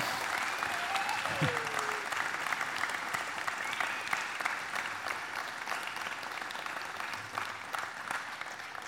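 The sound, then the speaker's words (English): An audience applauding, a dense, steady wash of many hands clapping that holds for the whole stretch, with a brief rising whistle-like tone early on. “I don't know if we should clap or not. It kind of feels like we should.”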